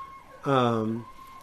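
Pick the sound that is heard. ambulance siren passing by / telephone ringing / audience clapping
ambulance siren passing by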